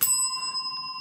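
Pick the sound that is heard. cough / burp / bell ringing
bell ringing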